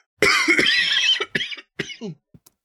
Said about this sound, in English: Hold on a second. I'm going to cough.